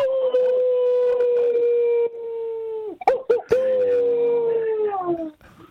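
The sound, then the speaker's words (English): A person's voice imitates a wolf howl: a long, loud, sustained tone that slowly falls in pitch, broken by a few sharp breaths or clicks midway, then resumes and trails off. “Do that one more time. Ooh. That's like a real wolf.”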